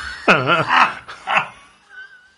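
A dog lets out a drawn-out, wavering whimpering bark, then a shorter yelp after a brief pause, with quiet background sound trailing off at the end.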